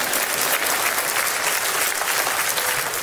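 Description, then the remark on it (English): A few people clapping in church: a brisk, steady patter of hand claps holding an even loudness for about three seconds, with no talking over it. “I got two people to clap over there.”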